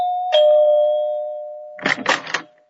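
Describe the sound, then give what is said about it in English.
A doorbell rings at the door of a large country home: a clear sustained chime tone that lingers and fades, followed by a quick burst of brighter, rattling chimes near the end. “I was so tired I had to back up and take a running start to press the doorbell.”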